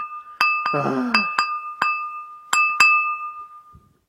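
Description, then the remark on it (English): A glass is tapped about seven times in an uneven rhythm, each clear, bright clink leaving a sustained ringing tone that hangs between strikes; a brief low voice murmurs early on. “Someone tapping a glass repetitively.”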